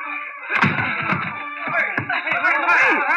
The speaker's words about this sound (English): That door's locked. Break it down. But get out of the way.